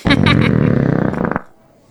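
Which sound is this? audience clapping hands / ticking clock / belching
belching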